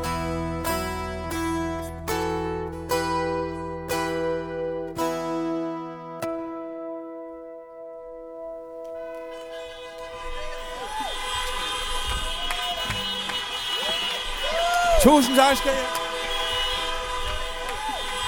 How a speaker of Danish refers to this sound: Og her hørte vi de mange bilister ved drive-in-koncerten dytte i hornene i stedet for at klappe, for at vise deres påskyndelse